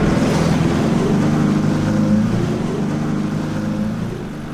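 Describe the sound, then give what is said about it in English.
A lobster boat's engine rumbles loudly as it is put in gear and the throttle slowly pushed ahead, towing a submerged van on a hawser toward Indian Ledge and the breakwater in a harbor: a steady, throbbing drone with a rough washing hiss that holds for several seconds before easing slightly at the end. “and slowly pushed the throttle ahead as he pointed the bow in the direction of Indian Ledge and the breakwater.”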